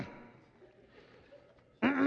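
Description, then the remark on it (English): After a stretch of faint low background noise, a voice abruptly imitates a boy sitting on a couch clearing his throat: one loud, gravelly, voiced rasp that wavers in pitch and runs to the end. “He kept clearing his throat.”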